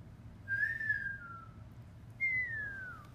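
Two drawn-out whistled notes, each sliding gently downward, with a short pause between them, set against a low steady background hum and no talking.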